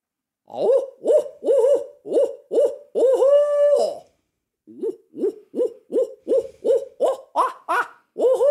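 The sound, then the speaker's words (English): A person imitates owl hoots: a quick run of short hoots and one long drawn-out call, a pause, then a rapid string of hoots climbing in pitch. No talking. “You are a very effective owl hooter, probably a little better than average.”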